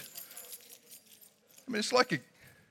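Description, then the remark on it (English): Many sets of keys held up by an audience jangle together, a scattered metallic rattling that swells into a louder burst near the end before fading, with faint voices murmuring underneath. “Everybody grab your keys.”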